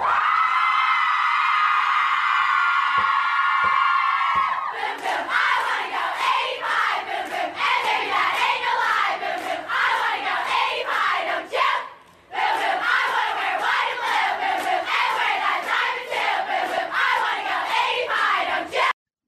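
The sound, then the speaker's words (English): A large group of women in a sorority recruitment video for Alpha Delta Pi chants loudly in unison. It opens with a sustained, high-pitched collective cry, then shifts into a fast, pulsing chant of shouted syllables that briefly drops out midway. “It sounds like a devil chant or something.”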